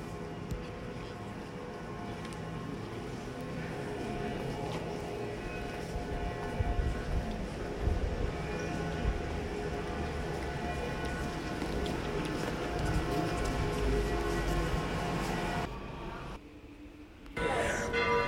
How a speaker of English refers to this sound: Now I'm inside the Pantheon, but I have my mask on, so I can't talk very loud. Listen to this beautiful echo in this amazing building.